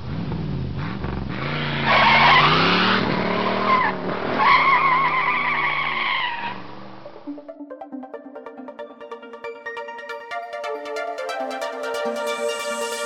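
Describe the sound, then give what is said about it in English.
A loud car engine roars while tires skid and squeal for several seconds, intense, then the screech cuts off and bright, tonal electronic music takes over. “That didn't sound like a Tesla.”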